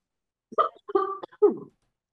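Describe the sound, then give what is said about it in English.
A quick cluster of three short, throaty coughs, fairly muffled, as if partly held back, followed by silence. “Sorry, I had to cough.”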